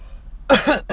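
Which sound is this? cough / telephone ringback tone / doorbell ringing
cough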